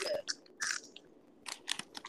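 Loud, crisp crunching of a hard snack being chewed, in irregular bursts with short pauses between bites, with no talking.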